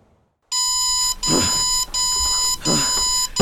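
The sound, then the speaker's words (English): An alarm clock rings at five a.m. with a steady, high electronic tone, pulsing in repeated bursts with brief gaps between them, loud and insistent after a moment of silence at the start. “Five a.m. Who set this goddamn...”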